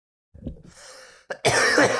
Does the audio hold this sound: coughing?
yes